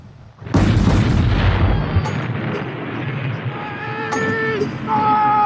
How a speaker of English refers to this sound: See, artillery and gunshots are really hard because I have to balance that audio somehow to make it so that you can hear the dialogue and then also have the artillery.